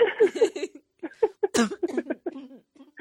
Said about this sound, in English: Oh, excuse me. Oh, God. The cough just like exploded out of nowhere. Sorry about that.